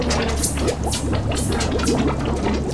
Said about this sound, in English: I can hear water, but I don't feel wet.